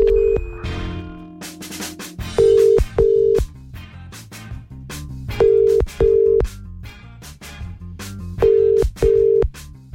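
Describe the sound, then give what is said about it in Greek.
A phone line rings out on an outgoing wake-up call: steady double-pulse ringback tones repeat three times at even intervals, with no answer, over a soft music bed. “Τον Ηλία από την Ειρήνη έχουμε να πάρουμε τηλέφωνο.”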